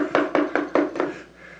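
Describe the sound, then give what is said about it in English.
Five steady knocks on a door, evenly spaced and fairly loud, each with a brief hollow ring that fades quickly, followed by a moment of quiet. No voices. “And Jesus comes knocking on the door.”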